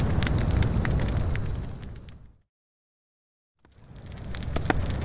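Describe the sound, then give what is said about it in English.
A building burning in flames, its entrances engulfed and its roof still intact: a loud, steady roar full of sharp crackles and pops, cutting to total silence for about a second midway before the crackling blaze returns. “The flames are getting closer.”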